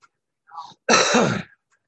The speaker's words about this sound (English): Let me clear my throat.